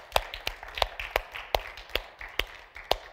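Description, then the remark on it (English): An audience claps hands for three women worship singers in a steady beat, roughly three claps per second, with sharp strong hits standing out over a busy bed of softer scattered clapping. No one speaks. “Ladies, 1, 2, 3, that are worshipers, let's just give them a hand clap.”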